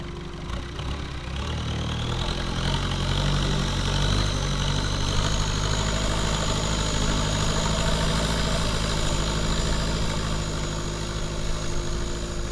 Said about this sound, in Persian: قایقران موتور را روشن کرد. تکانها چند برابر شد.